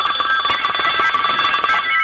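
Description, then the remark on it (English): A telephone rings continuously and fairly loudly, a steady electronic trill with rapid pulsing that fills the whole moment, at the start of a recorded call to a German hotline; no voices present. “Let's go to tape of one of those phone calls from the German hotline.”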